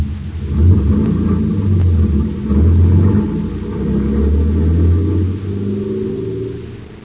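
A big truck rumbles along with a heavy, continuous low engine drone that swells and eases as it swerves from side to side, with no voices present.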